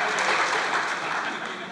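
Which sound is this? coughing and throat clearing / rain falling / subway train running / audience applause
audience applause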